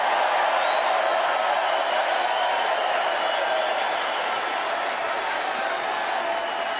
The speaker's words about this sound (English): A lot of clapping. Big, long bunch of claps here.